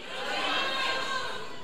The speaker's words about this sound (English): So on the count of three, yell at me, holler back at your boy. Let me know what your favorite style of food is. Ready? On the count of three. If I didn't say it, yell it out. One, two, three.